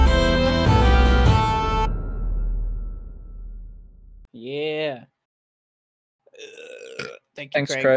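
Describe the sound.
A loud, close-up burp, deep and gurgling, rings out for under a second as some music fades away, followed shortly by people starting to talk.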